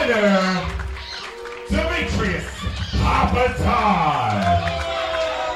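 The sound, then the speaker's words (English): A large wrestling arena crowd voices its displeasure at a match result, a loud, sustained wash of overlapping shouts and jeers that swells and continues throughout without a break. “Crowd doesn't seem like the result of this one.”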